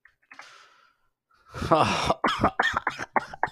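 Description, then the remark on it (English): A faint breathy inhale, then a loud, exaggerated coughing fit: one long raspy hacking cough followed by a quick run of choppy sputtering coughs, seemingly acted out by a voice. “I just cough up.”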